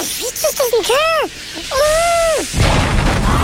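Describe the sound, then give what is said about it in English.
A cartoonish head explosion as Little Miss Wagon Features' swelling head blows off: a wavering, rising and falling whistle-like voice builds up, then a sudden loud burst of hissing noise takes over for the final second. “Little Miss Wagon Features' head has blown off.”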